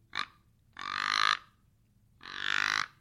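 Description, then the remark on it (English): A deer call blown to make deep buck grunts: a brief opening blurt, then two drawn-out, raspy grunts with a fine clicking rattle running through them, fairly loud, with no talking. “If you notice when I grunt, you can hear that clicking in it.”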